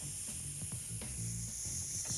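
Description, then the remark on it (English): A voice makes a steady, breathy hissing roar with a low hum underneath, imitating a jet engine. It holds at an even loudness for about two seconds, with no words. “I can do my jet.”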